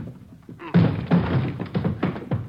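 Heavy thuds strike a door several times in quick, uneven succession as police officers try to force it open, each blow a loud, dull impact.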